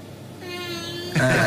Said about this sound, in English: So that cat says, aye.